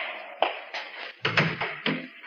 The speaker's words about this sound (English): Do you mind closing the door?